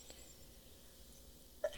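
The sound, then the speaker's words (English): A single short, stifled sneeze pops up near the end, after a stretch of quiet room tone; it is quick, muffled, and fairly soft. “Bless you.”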